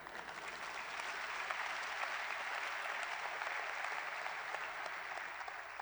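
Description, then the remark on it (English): An audience claps steadily during a sermon for about six seconds, a dense, even wash of many hands with no speech over it, holding a constant loudness from start to finish. “Even your clapping needs transformation.”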